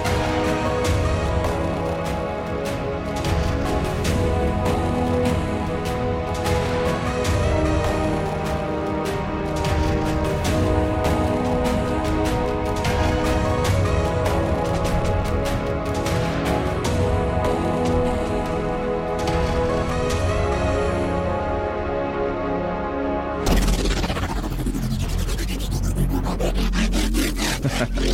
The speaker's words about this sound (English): Transformers. Yeah, literally Transformers noises.